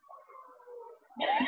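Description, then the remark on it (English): A pet cat gives a drawn-out, wavering meow at moderate volume, followed by a louder, rougher burst at the end as if the cat is being handled. “have you got kitten, cats? Hello. This is Boris.”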